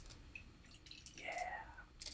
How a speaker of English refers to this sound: Oh yeah, sorry guys, I'm doing the pour. This is way too much. I'm going to pour it out after.